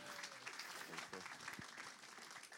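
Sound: audience applause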